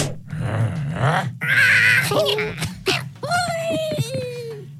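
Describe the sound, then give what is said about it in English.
Cartoonish character noises from the 2009 mobile game Angry Birds: squeaky chattering and warbling cries, a shrill high squeal in the middle, then sliding, wobbling tones, all fairly loud and continuous over about five seconds. “What mobile game released in 2009 features characters like Bomb, Officer Bill Beacons, and this sound?”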